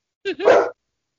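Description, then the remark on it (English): A dog, upset by a movie playing, lets out a single sharp, two-part bark, loud and brief, with silence before and after and no one talking. “The movie is freaking out the dog, that's why.”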